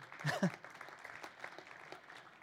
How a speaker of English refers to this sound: That's awesome. I'm going to clap for you, okay?